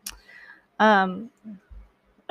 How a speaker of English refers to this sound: freaking coughing now because I have fans on all day every day, which is really fun.